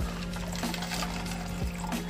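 Water pours steadily into a plastic drink mixer bottle holding W Gearless Energy Dragonade powder for about two seconds, a continuous splashing gush with a faint rising fill tone, with no talking.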